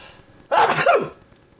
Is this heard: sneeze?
yes